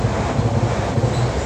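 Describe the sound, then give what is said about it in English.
A train passes along a railway line on a warm day with a steady, heavy low rumble and broad rushing roar, loud throughout, with a little wind noise and no talking. “The path doesn't go that far from the line.”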